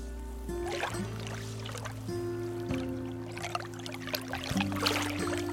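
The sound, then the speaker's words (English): Water laps softly in irregular small splashes over a steady low hum, gentle waves washing against the shore of Tamales Bay, across the bay from the town of Marshall. “The waves gently lap against the shore, and you can see the town of Marshall across the bay”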